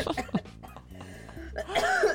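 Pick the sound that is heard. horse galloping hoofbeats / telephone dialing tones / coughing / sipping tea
coughing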